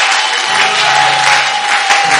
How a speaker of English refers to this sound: Clap, clap your hands, clap your hands for the Lord. Clap your hands.